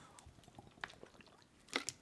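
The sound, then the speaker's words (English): Someone drinking water: quiet, wet mouth noises and swallows with a few sharp clicks, the loudest near the end. No talking. “Sorry. I was drinking water.”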